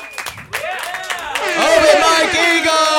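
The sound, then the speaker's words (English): A crowd bursts into loud cheering, many voices yelling and whooping over scattered clapping. The din swells after a brief lull and stays loud and sustained to the end. “Just make a bunch of noise.”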